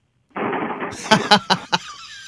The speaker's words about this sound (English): What if someone came and shook the cabinet right now?